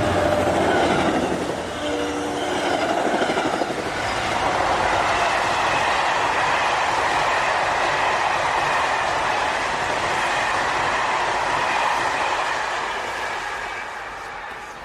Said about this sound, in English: Eventually, I was able to go back to bed, but then at 3, another train passed.